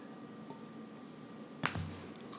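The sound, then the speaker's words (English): A single wet gulp of someone swallowing water, a short squishy click in otherwise quiet surroundings with no talking. “Drinking that water on this show, because everyone could hear your big old Adam's apple going gadoop, gadoop.”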